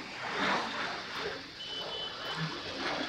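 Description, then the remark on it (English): A steady, broad roar of an airplane flying overhead, holding at a fairly even loudness for a few seconds with a faint high whine running through it and no one speaking. “And then, you know, it just in terms of, there goes another plane overhead.”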